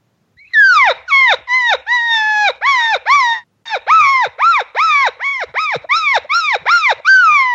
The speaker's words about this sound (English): And here's the sound this cow will make. As she goes, as she accepts that invite and goes to him, she'll sound just like this.